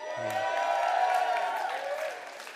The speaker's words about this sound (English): Come on, man. That deserves a bit of a more of applause than that. Thank you.